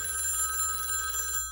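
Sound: telephone ringing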